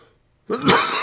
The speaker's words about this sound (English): pardon me here. Sorry, grandkids. I cough right into the microphone.